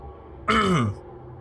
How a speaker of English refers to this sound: The guard hesitated to finish his sentence before clearing his throat.